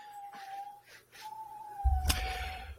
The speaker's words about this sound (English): You hear my dog whining next to me.